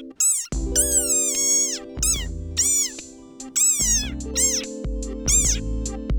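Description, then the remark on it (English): A desert rain frog lets out a rapid series of shrill, squeaky screams, about seven bending cries in quick succession, loud over a low steady hum, with no one speaking. “If I ever retire, I'd like to live my days like the desert rain frog, snoozing in the sand, and only emerging to eat or scream.”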